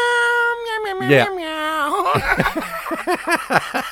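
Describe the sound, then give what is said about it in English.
A man's voice holds a long, high, wavering note, then breaks into a string of short, rising-and-falling cat-like meows, imitating a cat fairly loudly. “All of a sudden, it's about crocodiles, and he starts meowing like a goddamn cat.”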